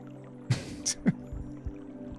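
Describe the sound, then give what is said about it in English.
Water running in a small indoor fountain in the corner, heard as a few brief splashy gurgles and drips over a steady low hum. “The water's running in the little fountain thing in the corner.”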